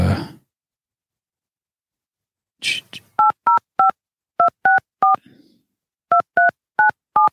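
A phone number is keyed in to call a man's wife: about ten short, steady touch-tone beeps in quick clusters of three, three and four, each a clear two-note electronic pitch, preceded by a brief rustle.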